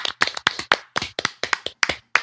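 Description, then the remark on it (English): A small panel claps for the entries for a couple of seconds, producing a steady run of sharp, bright hand claps with slightly uneven rhythm, like a brief round of applause from a few people. “So I just a round of applause from the panel to all you entries.”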